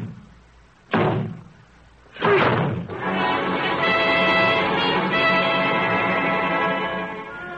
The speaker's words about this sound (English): I'm to break this door in, or rather we are.